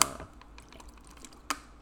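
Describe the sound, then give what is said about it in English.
A plastic water bottle crackles: a sharp crinkling snap at the start, faint scattered ticks, then another crisp crack near the end, with no talking. “Sorry if you hear that water bottle crackle.”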